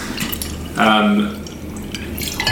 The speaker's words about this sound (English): So The instructions are simply to open the bottle and pour it out, which I think is probably about my level of competence behind the bar.